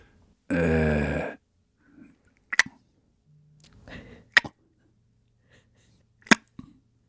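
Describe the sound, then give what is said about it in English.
A person makes sharp tongue clicks with their mouth to imitate bat echolocation: three crisp, loud pops spaced a couple of seconds apart, preceded by a brief buzzing vocal sound and soft breathy noises between. “Can you repeat the echolocation sound that you presented to us, the clicks?”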